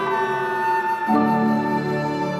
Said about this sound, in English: And here comes the ambulance!